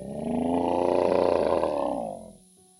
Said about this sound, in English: And there is this undeniable and low guttural growl that comes from that corner.